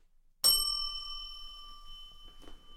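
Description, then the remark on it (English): A single bright bell strike rings out sharply and sustains with a clear metallic tone, slowly decaying over a couple of seconds with no talking. “I was going to say more, but I totally forgot to, and then I decided to hit the bell.”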